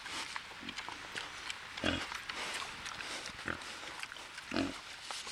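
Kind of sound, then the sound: animal, pig grunting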